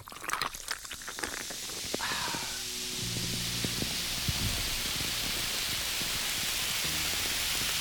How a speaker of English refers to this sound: Oh, it's so fizzy.